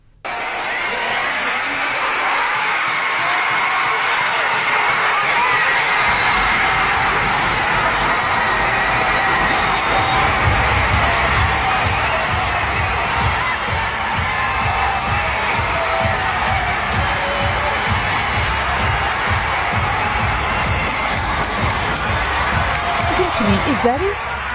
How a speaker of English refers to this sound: And the clip which we're going to play was obviously a very nervous Cape Town crowd. And just listen to the sound as it gets to that final moment and they realize that we've won. Let's take a listen.